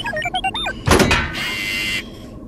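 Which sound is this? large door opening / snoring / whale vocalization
large door opening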